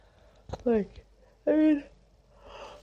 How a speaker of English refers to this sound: I'm yawning.